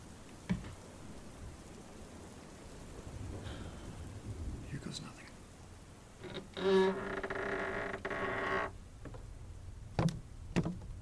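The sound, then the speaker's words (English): A wooden staircase creaks in a long, strained groan lasting a couple of seconds, set against a steady backdrop of rain with a few sharp knocks. “Wow, what a completely unexpected, creaky staircase.”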